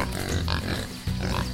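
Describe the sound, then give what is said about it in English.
Low, rough pig grunts and snorts come in a steady run, fairly loud, with a brief dip in the middle before the guttural oinking resumes. “There are farm pigs, pet pigs, and wild pigs too.”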